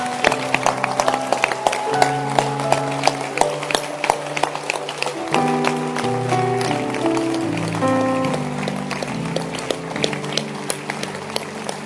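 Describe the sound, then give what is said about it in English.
An audience claps hands in a steady, crisp rhythm throughout, the many sharp claps blending together over sustained melodic instrumental notes that shift in pitch. “Clap your hands, all ye wicked people. Clap your hands.”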